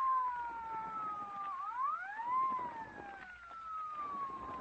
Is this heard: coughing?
no